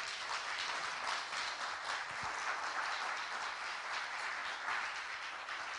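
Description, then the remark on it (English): A crowd claps steadily for several seconds as a hand clap of praise, a dense, continuous wash of many hands at an even level without a break. “Give them a hand clap of praise.”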